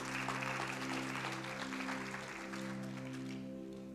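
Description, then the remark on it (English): An audience claps loudly and steadily for several seconds as a clap offering to God, a dense crackle of many hands over a sustained low organ-like chord, easing off slightly toward the end. “Can we give God a clap offering?”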